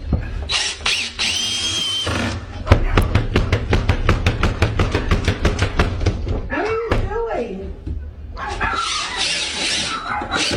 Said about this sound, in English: So what he's doing is he's drilling a 2x4 across the basement door right now.